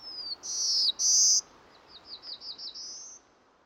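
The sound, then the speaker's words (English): A songbird sings alone, a song for communicating with its mate: two bright sustained whistled phrases, then a quick run of short rising chirps ending in a longer whistle, over faint background hiss. “The other type of song is more for communicating with the female, communicating with the mate.”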